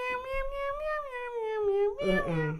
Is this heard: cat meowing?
yes